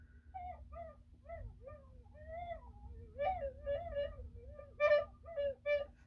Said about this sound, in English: Sounds like a sad dog. A barking sad dog.